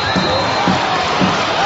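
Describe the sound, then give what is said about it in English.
A steady roar of a large crowd of Northrop home fans standing and cheering at a basketball game after a big block, with three dull ball bounces thumping at an even pace beneath the noise. “And that's got the Northrop faithful standing and cheering in this one for what's already appearing that it could potentially be a big statement win here this evening.”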